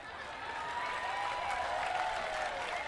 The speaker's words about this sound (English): Yeah, you're clapping.